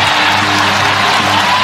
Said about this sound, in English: Oh, the Coyote got him. Go ahead and chow down, Coyote. Oh, the Coyote! And the crowd is jacked! The Coyote's going crazy!